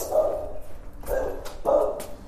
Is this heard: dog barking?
yes